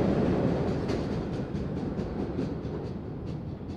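A late-night MBTA subway train in Boston leaves the station underground, rumbling steadily with a dense low-end roar and faint periodic clicks of wheels over rail joints, fairly loud, no voices.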